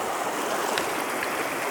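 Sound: creek water flowing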